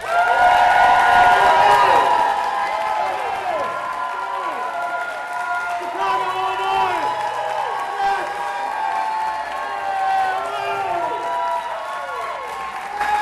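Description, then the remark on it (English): A crowd applauds and cheers without a break for about thirteen seconds, dense clapping under rising and falling whoops and shouts, staying loud and steady throughout. “You got to hold the applause for like 13 seconds.”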